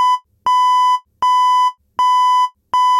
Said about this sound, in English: Five beeps like that. Then a little pause of about 30 seconds.